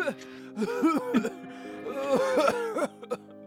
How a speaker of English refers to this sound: I'm gonna go downstairs and we're just gonna hear the echoes and the sounds of his coughing.